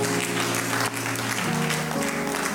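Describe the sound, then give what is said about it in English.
A church audience applauds steadily, a dense wash of many hands clapping at once, loud and continuous, with a faint low tonal hum underneath. “Can you clap for her, please?”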